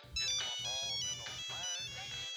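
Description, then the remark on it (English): A melodic phone ringtone plays loud, bright sustained tones shifting over a steady, pulsing low beat for a couple of seconds without pause. “I just really like that I never get phone calls anymore, though.”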